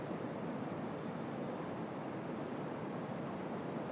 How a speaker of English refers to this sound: So often being alive is like this river that we can hear. Yeah. It's wild. And it's got boulders as well as calm, quiet pools. It's got shallow and it's got deep.